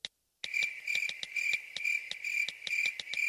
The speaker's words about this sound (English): Will somebody get these crickets out of here? They're not even in this story.